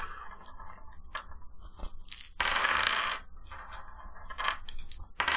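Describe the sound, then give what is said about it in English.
Dice clatter and tumble across a hard tabletop, a run of sharp clicks and rattles with one louder burst of rolling partway through, no voices. “These dice are weighted.”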